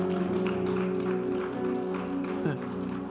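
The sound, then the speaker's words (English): A church audience claps steadily for a few seconds as a clap offering to the Lord, the applause mixed with sustained keyboard chords and some voices. “I thought you clap.”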